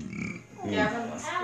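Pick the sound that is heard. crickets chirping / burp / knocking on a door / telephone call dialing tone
burp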